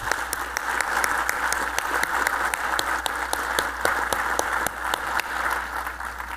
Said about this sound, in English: I want to hear it one more time. If you work in the water treatment industry, clap your hands.